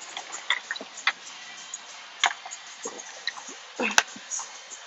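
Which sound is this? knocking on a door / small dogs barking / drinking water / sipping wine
drinking water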